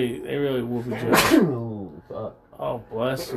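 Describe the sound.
A single sharp, muffled sneeze into a towel bursts out in the middle of a man's speech, loud, before he keeps talking.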